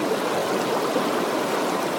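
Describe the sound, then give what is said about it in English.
Rushing floodwater roars in a steady, dense wash of hissing, churning noise that holds a constant loudness for two seconds, with no voices. “When floodwaters reach your door?”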